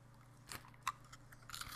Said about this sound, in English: Good crunch. Good cookie. You remember Dunkaroos? That's this. Exactly. It tastes like Dunkaroos. This tastes like a damn Dunkaroo with, like, a little tiny nougat crunch.